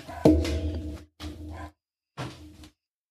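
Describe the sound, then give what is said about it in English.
A dog howls in three separate bursts, the first longest and loudest, the next two shorter, with brief silences between them, as an Amazon package is delivered. There is no talking. “There's my dog's howling.”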